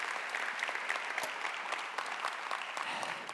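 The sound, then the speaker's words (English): A church audience claps steadily after a prayer, applauding a group of men and women, a dense wash of many hands with scattered sharper claps standing out, sustained at an even level with no voices breaking through. “There's some other ways that you can connect with them by just no other than just applauding and praying, all right?”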